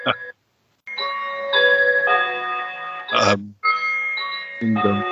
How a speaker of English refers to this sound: But whole turkeys are more I suppose it comes, excuse the clock.